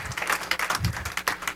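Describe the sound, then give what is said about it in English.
An audience claps their hands in praise during worship, a dense, steady patter of many overlapping claps, fairly loud and continuous for a second and a half, with no voices speaking. “Oh, come on, give him a hand clap and praise this out.”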